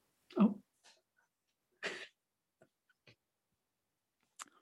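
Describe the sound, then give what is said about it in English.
A sharp cough bursts out after a person sucked in some wind, followed a second later by another harsh cough, then a few faint clicks and breaths, with no talking. “Sucked in some wind and had to cough.”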